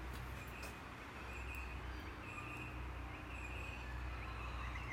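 Birds sing faintly outdoors, with scattered thin whistles and chirps drifting over a steady wash of low background noise, with no one speaking.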